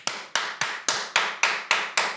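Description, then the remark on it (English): Eight loud, sharp hand claps in a steady, even rhythm, each crack ringing briefly before the next. No voices. “And I was doing and it was really loud so clapping. Fucking loud.”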